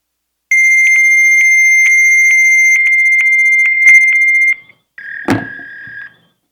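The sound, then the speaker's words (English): A fax machine's answer tone over a phone line, reached by dialing the number listed for the Ukiah Veterans Office: a loud, steady high-pitched whine lasting about four seconds, then a sharp click and a second, shorter burst of the same shrill tone. “So I'd love to know why a fax number is on the CEO report put out to all the veterans.”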